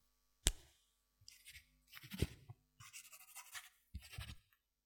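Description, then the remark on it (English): A pen scratches across paper in short, uneven strokes after a sharp tap, with brief pauses between bursts of writing. It is fairly quiet, with no voices. “Does anybody still have the patience to mark paper with their own handwriting?”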